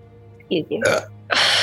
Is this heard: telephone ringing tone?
no